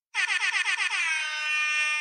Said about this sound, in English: Let me get a motherfucking air horn for this segment.